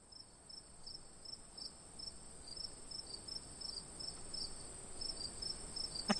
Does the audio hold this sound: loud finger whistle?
no